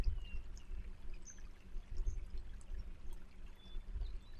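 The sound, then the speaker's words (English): A creek gurgles steadily over rocks, a low continuous burbling wash with small bright splashes and trickles scattered throughout, even, with no voices. “And lo and behold, you discover a beautiful creek that is gurgling and chuckling by.”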